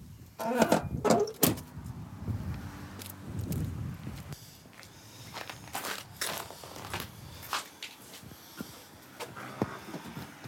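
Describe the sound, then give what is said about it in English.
The heavy wooden front door of the Oak Center General Store creaks open, followed by a run of steady footsteps across a creaking wooden floor, with no one speaking. “As you push the heavy wood door open, a bell rings and you step onto a creaky wood floor.”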